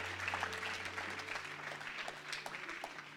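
A church audience claps for its young people steadily for about three seconds, a dense, even patter of many hands with no voices over it, plus a low steady hum underneath.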